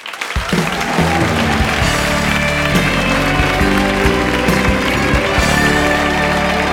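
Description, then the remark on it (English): Loud, sustained audience applause at a comedy show welcoming comedian Reginald D. Hunter swells up after a quiet start and continues steadily as a dense wash of clapping, with some low rumble underneath and no one speaking. “Oh, that's your applause there, Reginald.”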